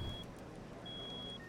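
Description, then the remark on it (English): A parked car's engine rumbles steadily as the car is moved, a low, even drone with a faint high whine running above it, and no voices. “Fine, I will move the bloody car.”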